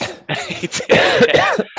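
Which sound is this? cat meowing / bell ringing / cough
cough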